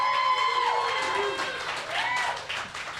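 An audience of about 41 people at a pub applauds steadily for about three seconds as hosts take the stage for a live show, dense clapping mixed with whoops and cheering voices rising and falling over it, loud throughout and fading slightly near the end.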